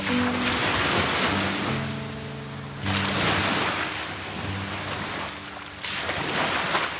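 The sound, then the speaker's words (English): Loud sea waves, recorded with the microphone held very close to them, wash and churn continuously, with surges of rushing water swelling and receding, plus a low rumbling drone underneath; no voices. “I'm gonna hold the microphone very close to the wretched waves.”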